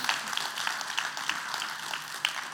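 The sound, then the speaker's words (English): A crowd at a worship service applauds steadily to cheer a man on, a dense patter of many hands clapping without pause, with a few sharper individual claps popping out above the wash of sound. “Give me a hand.”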